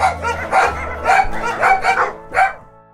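Several dogs bark in quick, overlapping bursts, a lively chorus of yips and barks about five or six times over a few seconds, loud with no one talking.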